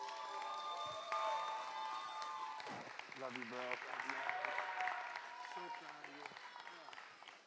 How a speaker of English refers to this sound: Could you give him a round of applause, please?